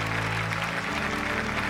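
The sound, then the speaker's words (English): A steady wash of applause from a standing audience at the end of a stage show, dense and even, with many hands clapping at once and a low hum running beneath it. “When the show ended and the clear curtain lowered over the stage, everyone stood and clapped for several minutes.”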